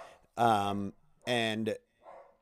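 A person imitates their dog Jackson barking at the mailman, with two drawn-out, loud woofs in quick succession, followed by a softer, brief trailing sound.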